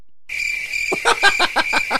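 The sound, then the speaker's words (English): A crickets sound effect: crickets chirp in a steady high-pitched trill, joined after a moment by a rapid series of pulsing chirps, fairly loud with no voices over them. “Crickets. Oh, I have a drop.”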